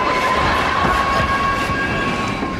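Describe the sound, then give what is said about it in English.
A subway train rumbles loudly and steadily as it brakes and comes to a stop, with a thin metallic whine over the low roar. No one speaks. “This is where the train stops with George.”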